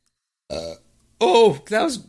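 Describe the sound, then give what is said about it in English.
A short burp is followed by a longer, gravelly belch and a final croaking one, loud, with brief silence between them, from someone who has been drinking beer. “Santa, can you put a burp blocker on my Christmas list?”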